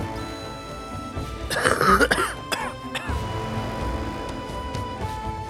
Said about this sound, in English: you cough in the smoke as smoke alarms across the apartment are going off.